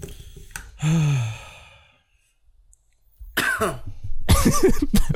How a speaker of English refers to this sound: That one cough. All right. Okay. I see. I'm feeling the crowd.